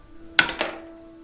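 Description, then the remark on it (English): Dice rattle briefly: a quick cluster of three or four sharp, bright clicks within a fraction of a second, quickly fading over a low, steady hum. “God, these dice. Roll it again.”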